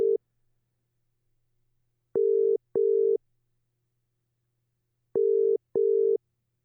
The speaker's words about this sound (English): We do have my phone connected into the mixing console, so hopefully it all goes on without a hitch. I am calling a friend now. Hopefully we'll be able to hear this ringing.